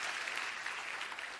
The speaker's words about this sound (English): Hand clap for these two and that one right there.